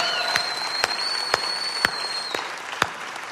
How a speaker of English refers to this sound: We have actually one church in multiple locations, so I want to give a shout out, and we're all going to applaud for this. Fellas at RCMU, the Rapid City Minimum Unit, we're glad that you're in on this.